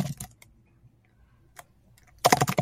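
Quick clacking of a computer keyboard, a few separate keystrokes followed by a dense, louder burst of rapid typing at the end, fairly close by.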